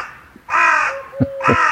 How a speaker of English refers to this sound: You can hear the sounds of the birds this morning. A collared dove, and I think that was a crow.